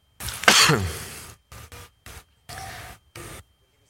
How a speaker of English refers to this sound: I did it the reverse. I coughed into the mic and turned it off when I needed. Sorry about that.